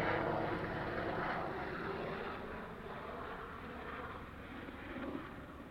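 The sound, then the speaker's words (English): A gigantic helicopter roars overhead, heard from inside a car in a cemetery, shaking the car: a loud, steady low-frequency drone with rotor-like pulsing that fills the whole clip, holding constant with no voices. “My car is shaking from the gigantic helicopter flying overhead.”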